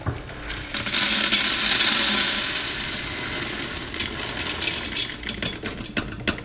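Dried, unsoaked beans pour into an Instant Pot in a steady, loud rushing rattle for a couple of seconds, then trail off into scattered clicks and patters as the last few drop in.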